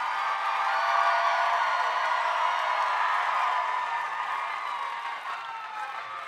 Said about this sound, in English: I missed your applause. Is it about equal with how mine was? Exactly, or? The same. Exactly. It was exactly the same.